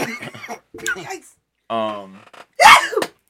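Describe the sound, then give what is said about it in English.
A single loud, explosive sneeze bursts out after a drawn-out voiced inhale, following a couple of seconds of people talking. “This nigga sneezed. Like, really sneezed.”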